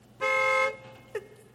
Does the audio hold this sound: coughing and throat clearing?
no